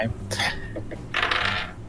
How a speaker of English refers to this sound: Oh, okay. I interfered with that dice roll, so that doesn't count.